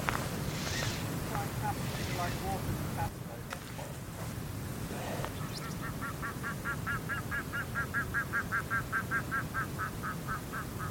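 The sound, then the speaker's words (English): An unusual bird call: a rapid, rhythmic series of repeated nasal notes, fairly loud and steady, rising over a constant rush of wind and outdoor background noise, with a few scattered calls beforehand. “So that was an unusual bird call. I don't know what that was.”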